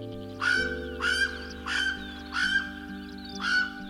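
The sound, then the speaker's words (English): A Hawaiian crow (alala) gives five harsh, drawn-out caws at a steady pace of about one per second, fairly loud, over a low, steady droning background. “Enter the story of the Hawaiian crow, the alala.”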